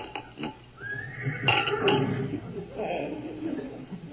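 A horse's neigh rings out loud, as if right outside the house where horses are tied to the porch railing, a rising whinny that breaks into a shaky, sputtering trail over a couple of seconds, with no talking.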